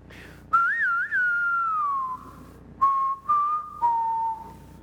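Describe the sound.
A lone, clear whistled melody in a Western standoff style, with a wavering opening phrase followed by several sustained, falling notes, fairly loud with no talking.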